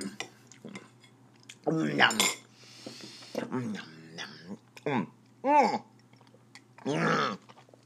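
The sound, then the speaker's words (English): Someone eats with cutlery: sharp metal clinks and scrapes against a plate come in scattered bursts, mixed with wet chewing noises and several short, loud vocal outbursts. “I feel like I'm on Sesame Street the way I'm eating this food.”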